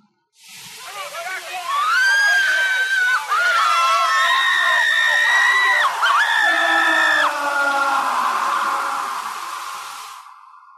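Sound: people screaming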